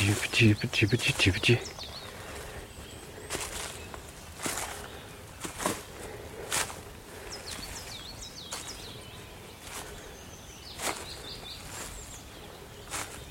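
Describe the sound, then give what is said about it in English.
A small bird, a coal tit, sings short bursts of repeated high, thin two-note phrases over crunching footsteps and outdoor rustling, in open country with stone walls and big old trees. “Sounds like a coal tit.”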